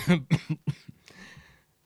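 A quick run of three or four harsh coughs, one after another, then a softer trailing cough and a raspy, drawn-out breath. No one speaks.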